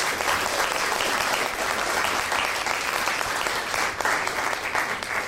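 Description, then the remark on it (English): A crowd applauds steadily, dense clapping filling the room at a consistent, fairly loud level for several seconds with no voices standing out. “Round of applause for that one.”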